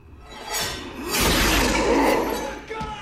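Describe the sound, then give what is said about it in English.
Loud glass shatters with a heavy thud at the onset, followed by a sustained spray of crashing, tinkling shards lasting a couple of seconds, dramatic like a staged scare effect. “The glass, mm-hmm. And then they give you a big fat boom.”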